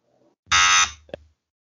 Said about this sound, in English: Incorrect. If you couldn't hear the buzzer.